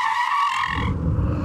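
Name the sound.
car tires skidding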